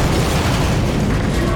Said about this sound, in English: You run up behind them, you grab them, and you push. The explosion happens right at that point for cinematic reasons.